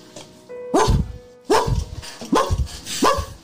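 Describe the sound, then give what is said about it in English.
A dog barks four times in a steady rhythm, the barks deep and slightly muffled as if coming from behind a closed door, with a faint whine between them. “There's a dog barking from the door directly in front of you, from behind the door.”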